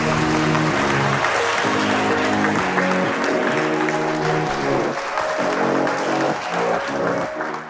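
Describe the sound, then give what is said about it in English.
An audience claps steadily and loudly for several seconds, welcoming Vint before his talk on the future of the Internet of Things, a dense crackle of many hands, while a bright instrumental tune with repeating chords plays underneath. “I always get nervous when people clap before I've said anything.”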